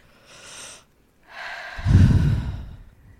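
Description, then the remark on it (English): A deep breath drawn in as a breathing exercise, a brief pause, then a longer, heavier exhale with a low rushing rumble, with no talking. “Can we do a breathing exercise?”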